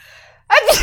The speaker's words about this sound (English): All right. Now I am. Sneezed. Okay. Oh, my gosh. You have to say bless me. Now I'm possessed. Bless you.